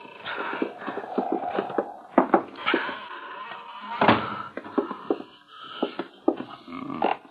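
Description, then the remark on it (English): An old door, unopened for a long while, creaks open slowly, a long, wavering groan broken by irregular ticks and pops, fairly loud, stretching over several seconds with no voices. “Ain't nobody open that door for a spell.”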